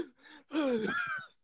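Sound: imitated heavy panting breaths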